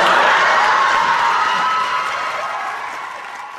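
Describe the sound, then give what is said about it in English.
A long, loud wave of studio audience applause with scattered cheers and whoops after Ellen's coming-out line "Susan, I'm gay" on the ABC sitcom Ellen, a dense continuous clatter of clapping that holds steady and eases off slightly toward the end. “A very deserved long applause.”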